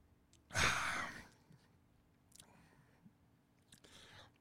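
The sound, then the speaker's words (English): A loud slurping sip of DDH Juice Bomb IPA beer from Sloop Brewing, followed by a swallow and a breathy exhale, then a couple of quieter mouth and breath sounds. “And I'm going to go ahead and I'm going to take my hit here. Or I should say my sip.”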